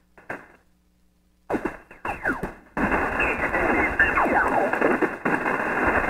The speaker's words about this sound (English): Hearing a little static. And of course, there's a... I think there's somebody talking there.